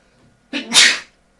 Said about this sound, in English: I just sneezed. I'm sorry. You can sneeze, that's fine.